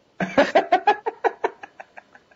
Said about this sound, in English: Cat, shut up.